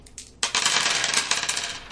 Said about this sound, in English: Can't stop rolling the ones. Where did you learn to roll dice?